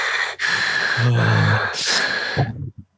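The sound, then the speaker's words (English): A man imitates an old man breathing with exaggerated, heavy wheezing breaths, a long raspy inhale and exhale with a throaty rumble, ending in a couple of short snorting puffs. “Old man breathing.”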